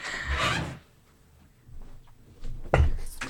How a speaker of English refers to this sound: What the? Excuse me, there's 1 second. There appears to be a knock, knock, knocking in the studio.